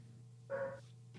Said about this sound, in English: That's a good dog. Yeah, don't mind the dog. She be doing her thing. She's beautiful. She's beautiful, baby.